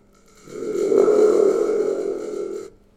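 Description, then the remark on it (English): A spring drum, also called a thunder drum, used as a sound effect gives a single sustained, buzzing rumble, swelling in quickly and holding steady for about two seconds with a growly, metallic low tone before cutting off. No voices accompany it. “This is a spring drum or thunder drum.”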